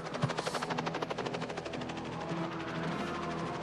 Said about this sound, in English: With this Indiana Jones looking helicopter.